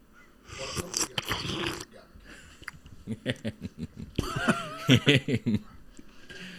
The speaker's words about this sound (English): So then you got to cut the adductor. Look at it. Yeah, there it is. So now you have to do the slurping. Oh, ready?